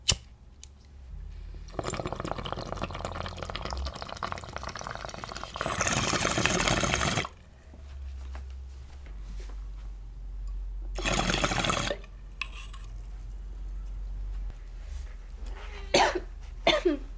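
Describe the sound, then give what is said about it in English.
A long, steady bubbling of water drawn through a bong for several seconds, followed later by a few short coughs. Nobody speaks. “That was such a lovely rip.”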